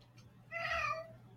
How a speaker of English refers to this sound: It's just a meow from my cat.